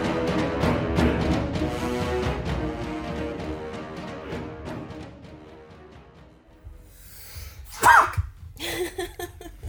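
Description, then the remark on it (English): A soft instrumental passage fades, then one loud, oddly pitched reverse sneeze from a woman bursts out near the end, followed by a few quieter rustling, breathy sounds. “What is happening? A weird sneeze.”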